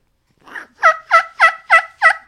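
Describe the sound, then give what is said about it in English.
A three-reed latex mouth call with a single half-moon cut imitates a turkey's yelp: six evenly paced, clear two-tone notes, the first one softer. The notes are fairly clean rather than raspy, with no talking. “So this will kiki, it'll cut, it'll yelp, but it's not real raspy.”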